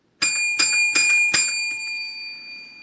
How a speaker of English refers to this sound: So here we go with our songs. We will ring our bell.